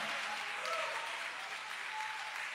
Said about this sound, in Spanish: Aleluya, denle fuerte aplauso al Señor con el corazón.